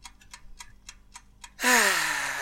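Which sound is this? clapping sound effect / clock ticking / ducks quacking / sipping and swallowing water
clock ticking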